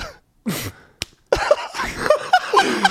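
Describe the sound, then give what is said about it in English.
A single sharp, brief smack of a man slapping his own face while holding a mic, trying to signal a cut. It is preceded by a short breathy burst and followed by bursts of laughter. “He just slapped himself in the face.”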